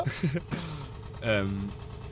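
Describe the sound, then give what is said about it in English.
A boat engine chugs along at a steady low rumble as the boat passes by, while people talk loudly over it in short bursts. “Got a chug boat. A chugger. We've got a chugger coming past.”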